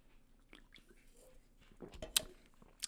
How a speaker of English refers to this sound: Excuse me while I sip on my Monster.